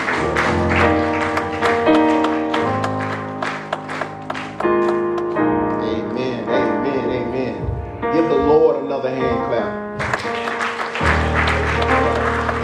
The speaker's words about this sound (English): Pastor, another hand clap.